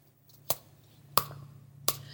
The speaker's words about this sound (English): I'm also going to use my empty, handy toilet paper roll to serve as my percussion instrument. On one side, I've actually also attached tissue paper to add to the range of sounds it can make.